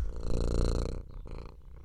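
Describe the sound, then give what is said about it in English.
A cat purrs loudly, a steady rumbling drone for about a second before it softens and becomes broken and uneven. “This cat is so loud.”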